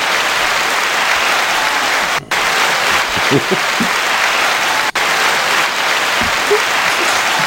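Steady, dense audience applause fills the whole stretch, a loud wash of many hands clapping with a couple of brief dropouts and faint murmurs underneath.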